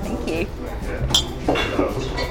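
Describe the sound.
Glasses clink together in a toast at a whiskey awards event, a couple of bright, ringing taps against a murmur of voices and room noise.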